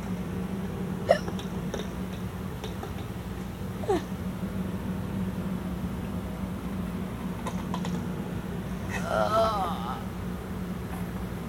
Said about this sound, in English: Hiccups are the bomb. The hiccups are bad. They really hurt.